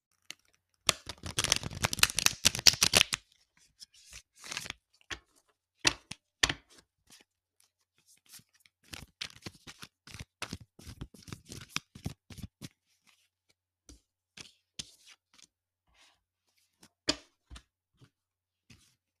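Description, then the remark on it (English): A deck of tarot cards is shuffled to pull a card or two: a dense riffling burst at the start, then scattered soft taps and flicks as the cards are handled and squared, with no talking. “All right, you know I had to shuffle and pull a card or two, and today two fell out.”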